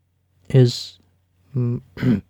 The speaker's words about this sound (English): asked after clearing his throat, speaking in a muted mumble.